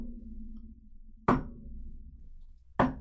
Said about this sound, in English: So that no shit, we've heard it ever since we lived here. That sort of knocking at midnight.